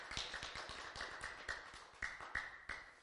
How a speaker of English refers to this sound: Give him another hand clap right now, if you will.